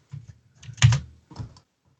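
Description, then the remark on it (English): Clacky mechanical keyboard typing a web search in a few quick bursts, with one louder cluster of keystrokes in the middle, crisp with no voices. “It's a mechanical keyboard. It's loud.”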